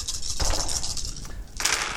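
Dice clatter and rattle across a hard surface in two bright, clicky bursts, a scattered tumble at the start and a second sharper spill near the end, with no voices.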